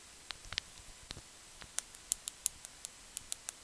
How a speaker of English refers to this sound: The clicking.